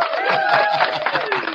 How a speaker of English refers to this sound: Just have a round of applause. All right.